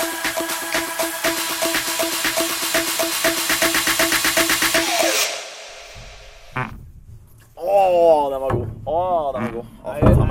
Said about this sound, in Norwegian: Jeg tror det knirker litt I tofta, ja. Ja, det må være. Tror du det må være tofta?